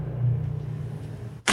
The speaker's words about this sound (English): Fucking Atlanta's traffic.